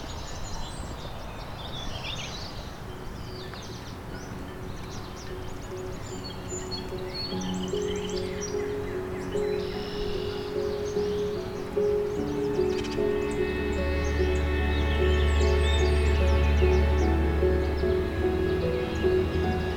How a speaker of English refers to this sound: song sparrow.